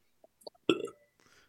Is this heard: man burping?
yes